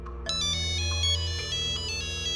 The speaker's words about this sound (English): He heard the sounds of the cave and the ringtone echo.